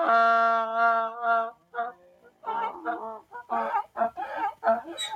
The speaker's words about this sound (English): It's a donkey. Donkey. It is a donkey. It is a donkey. Okay. It is a donkey. I get it.